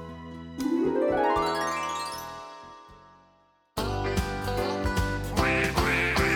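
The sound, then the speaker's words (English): Cartoonish duck quacks sound over bright, bouncy children's counting-song music about six little ducks, following a long rising slide that sweeps up in pitch and then cuts to the full band. “But the one little duck with the feather on his back, he led the others with the quack, quack, quack.”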